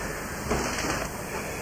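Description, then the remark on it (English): Rain coming down in a steady, even hiss, a constant wash of noise with no clear breaks and no voices, holding at a moderate level throughout. “Well, it's got his old rain coming down, but now it's not as bad.”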